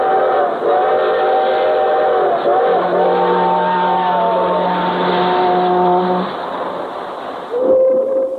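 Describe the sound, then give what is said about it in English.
Long, sustained freight train whistle blasts with steady harmonic tones, sounding repeatedly over several seconds above a rumbling background, then fading as a short final blast trails off. “Hear 'em? The whistles of the freight trains?”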